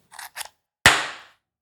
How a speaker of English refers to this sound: That was a party popper, and now I have confetti all over this room that I have to vacuum up. But nonetheless, it was exciting.